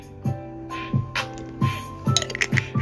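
Someone drinks water in a series of rhythmic gulps, about six swallows, with light glassy clinks and faint wet squishing between them. No one speaks.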